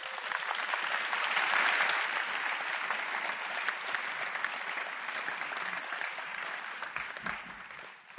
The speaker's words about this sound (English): Clap for Jesus.